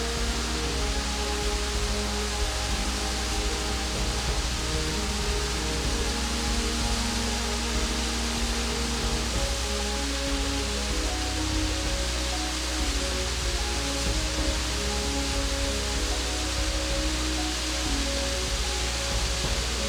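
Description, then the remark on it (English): A steady, dense roar of Vide Creek's waterfall, the water arcing off a drop and crashing down, continuous, unbroken and fairly loud for the whole stretch with no voices. “Then, it's gone, carving a graceful arc as it throws itself into space, only to crash once again to Earth.”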